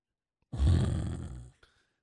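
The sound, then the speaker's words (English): A single loud, rasping snore voiced by a person, a rough rattling inhale lasting about a second, alone, followed by a faint click. “That was a snore.”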